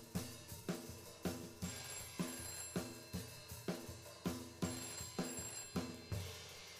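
A telephone rings repeatedly in a steady, fast rhythm in the apartment shared by Kids in the Hall members Kevin, Gary and Frank. Each bright, tonal burst follows the last at regular short intervals, with no voices present.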